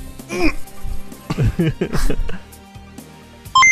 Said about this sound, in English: Calculating computer activated. Beeps.